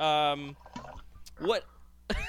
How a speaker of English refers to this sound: Did you guys hear that? Yes. We heard you pouring the dram over there.